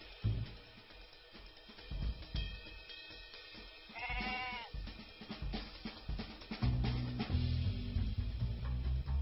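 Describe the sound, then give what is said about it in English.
A full-grown goat in a grocery store lets out a single wavering bleat partway through, set against a busy, noisy background with scattered clatter and a low rumble building toward the end. “A full-grown goat is an excellent choice.”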